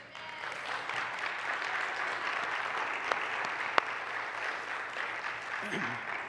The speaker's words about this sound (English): Heavenly Father, that praise and applause is for you and for your word.